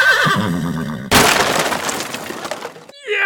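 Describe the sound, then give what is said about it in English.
A horse lets out a loud, wavering whinny, then a sudden heavy crash of breaking wood and shattering glass erupts and clatters away for about two seconds, as Pierre, walking down the street, is hit by a horse and cart. “Pierre was walking down the street when he was hit by a horse and cart.”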